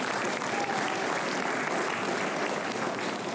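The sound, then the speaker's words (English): An audience claps steadily for the positive work being done across the Commonwealth of the Bahamas, in a dense, sustained wash of applause that stays loud and even throughout, with no voices rising above it. “I believe we should give the positive work being done all over the Commonwealth of the Bahamas a rousing round of applause.”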